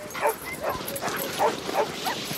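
Sled huskies bark and yip excitedly, short high calls bursting out every half second or so over a constant noisy din of many dogs.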